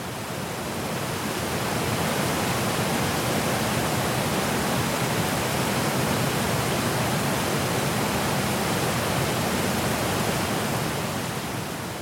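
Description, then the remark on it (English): A steady, dense roar of water tumbling down the rocks of Clearwater Falls on the Clearwater River, off State Highway 138 in Oregon, among tall Douglas fir trees, fills the whole clip, loud and unbroken, with no voices present. “Tall Douglas fir trees line the Clearwater River, and the water topples down the rocks of Clearwater Falls.”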